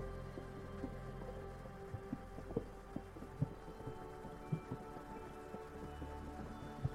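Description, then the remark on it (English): Scattered raindrops, as rain starts to fall, tap against and run down the outside of a train window over the steady low hum and rumble of the moving train, with a few sharper, louder drops standing out from the soft patter. “I don't know if you've noticed yet that it's starting to rain outside the train, and the raindrops run down the outside of the window.”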